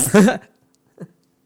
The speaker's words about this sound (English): I don't even remember downloading these. I don't even know what they fucking sound like. So here's medium fart.